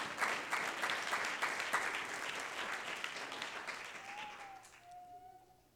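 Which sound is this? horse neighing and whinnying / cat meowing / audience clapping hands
audience clapping hands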